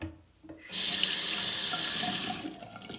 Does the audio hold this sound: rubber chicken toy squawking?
no